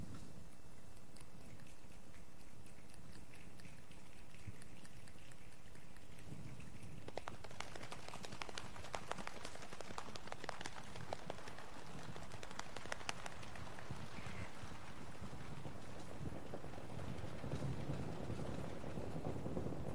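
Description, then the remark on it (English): A large crowd makes a rainstorm with their hands, starting as soft rubbing and building into dense, scattered snapping and clapping like heavy rain, then fading back to a gentle patter. “while we do that, I just want you to think about rain”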